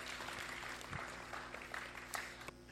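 A room full of people claps steadily for the aunties, grandmas, nanas and godparents present, a dense wash of applause that stays fairly even for a few seconds before starting to thin out at the end.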